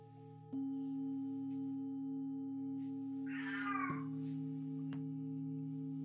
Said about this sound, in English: Hear my cat, she desires food right now.